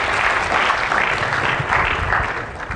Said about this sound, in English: Well, I want to, let's have a round of applause for everyone who participated in the role plays. Great.